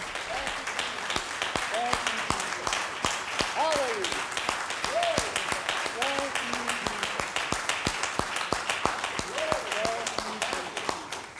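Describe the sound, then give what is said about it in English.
An audience bursts into sustained applause as a hand clap of praise to the Lord after a prayer, dense rapid hand clapping filling the whole stretch at steady loudness, with scattered voices calling out and cheering over the claps. “Let's give the Lord one more hand clap of praise here.”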